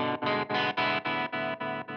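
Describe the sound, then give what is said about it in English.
An electric guitar chord pulsing through the photo mode of an amp tremolo, where a photo resistor reacts to a blinking light bulb, its volume swelling and dipping in a steady, fairly quick rhythm, about eight throbs over two seconds, fairly loud, with no talking. “Similarly, are there three modes for the tremolo? Yes. Okay. One of them is photo.”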